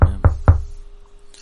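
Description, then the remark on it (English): Three quick, evenly spaced knocks on a door, solid, each thud ringing briefly before fading into quiet. “is knocking at the door.”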